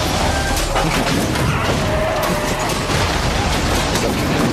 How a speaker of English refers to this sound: Is there an explosion from Bad Boys or something that we can get to spice this up?